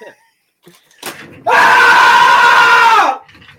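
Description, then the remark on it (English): A loud, sustained human scream of about a second and a half, shrill and steady before cutting off, preceded by a brief knock and faint murmuring. “Can I scream yet? Can I?”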